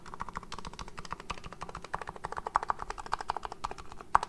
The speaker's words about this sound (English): That's that thock sound. So the Topray keyboards are known for this sound. It's called thock.